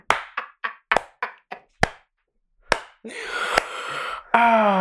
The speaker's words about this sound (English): It's really not helping you when you start clapping. I know. I did that on purpose.